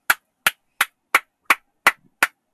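Hands clap eight times in a steady, evenly spaced rhythm, each clap a sharp, bright crack with a quick decay and silence between. No one speaks.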